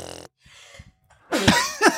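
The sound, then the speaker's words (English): A brief vocal sound and a quick breathy inhale lead into a loud sneeze that bursts out forcefully, followed by a second sharp exhale at the end. “I think that's the first time you've sneezed on the pod.”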